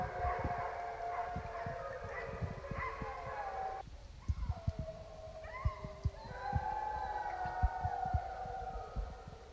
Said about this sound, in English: While a lot of our schedules are disrupted, it's pretty neat to live next door to a dog yard, and that noise that you just heard was an after-dinner dog howl. In Alaska, there's a lot of sled dogs, the Alaskan Huskies, that live in dog yards,